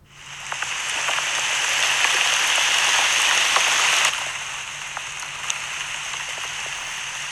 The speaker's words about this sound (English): Rain Sounds like the perfect storm, rain on window, rain on leaves, light rain, evening lake, rain on roof